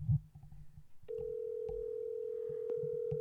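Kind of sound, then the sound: signal or alarm, phone call ringing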